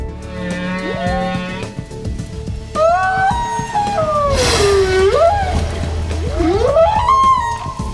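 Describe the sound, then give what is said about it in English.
Long, moaning whale calls from Winston the Weather Whale, asked what the weather is, glide up and down in pitch, several drawn-out cries following one another, loud with a low rumble underneath and no talking. “Up next, we ask, what's the weather? With Winston the Weather Whale.”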